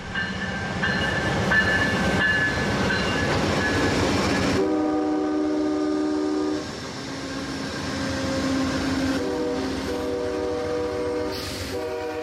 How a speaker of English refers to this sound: It would appear it's a short platform, so once passengers have got onto the carriages at the front of the train, it then pulls forwards to allow the passengers to get onto the carriages at the back of the train.